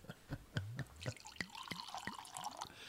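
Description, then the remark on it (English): Wine glugs into a glass in a quick series of splashy bursts, the liquid's tone rising steadily as the glass fills over a few seconds, with no voices. “Nice pour”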